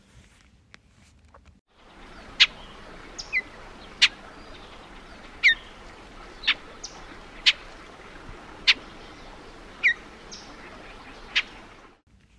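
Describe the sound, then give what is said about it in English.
An icterid (blackbird-family) bird gives sharp, single-note chip calls, about nine of them at uneven intervals, each crisp and clear over a faint steady outdoor hiss. “They also give a sharp one-note call, which again recalls their blackbird family.”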